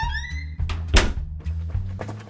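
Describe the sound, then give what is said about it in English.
A door swings shut as someone runs out and closes it behind them: a brief rising creak of the hinge, then one solid, heavy thunk, followed by a few softer knocks and rattles over a low, steady hum. “I stood up and ran out the door, closing it behind me.”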